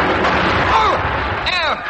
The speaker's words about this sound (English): At that moment, the Germans began throwing everything at us. What they got out there? A 3-inch cannon. Oh, well, that shouldn't hurt anyone.